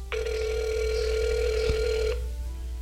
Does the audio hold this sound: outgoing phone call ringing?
yes